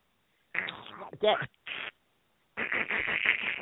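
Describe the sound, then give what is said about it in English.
A human voice imitates a duck laughing: a few raspy, buzzy bursts, a brief pause, then a longer run of rapid, nasal quacking chatter. “That was the duck laughing.”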